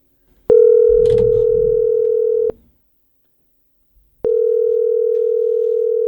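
A steady telephone tone sounds loudly for about two seconds, stops briefly, then returns, with a short burst of low fumbling noise near the start, while placing a call to the radio station Rock 107.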